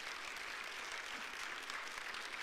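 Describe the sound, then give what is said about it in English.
A church audience claps steadily, giving the Lord a hand clap, a dense wash of many hands applauding together at an even level throughout, with no voices standing out. “And let's give the Lord a hand clap for what he's done, okay?”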